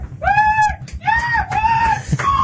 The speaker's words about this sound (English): All the fans cheering there. Yes, that's what I like to hear. They're going mad.